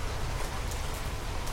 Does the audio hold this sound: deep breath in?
no